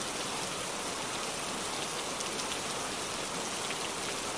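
Steady rain falls continuously, a dense, even hiss of countless drops pattering on a surface, with no pauses or voices, holding a constant moderate loudness throughout.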